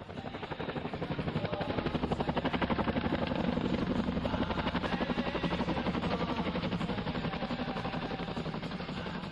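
A Chinook helicopter bringing weekly supplies to a remote Rangers base in Helmand Province thunders overhead. Its twin rotors produce a loud, rapid, steady chopping beat that fills the whole recording, growing slightly stronger before holding steady.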